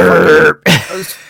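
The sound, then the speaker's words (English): A person vocally imitates a loud, drawn-out, guttural, abnormal burp: a long rough belch-like groan, a brief break, then a second strained croaky burst. “It's not even a normal burp either. It's like, burp.”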